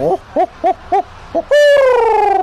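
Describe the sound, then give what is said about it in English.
A voice imitates a barred owl: five quick, rhythmic hoots, then a loud, drawn-out hoo that slides gradually downward in pitch. The call is clear, with no talking. “The barred owl sounds kind of similar to the horned owl. It goes.”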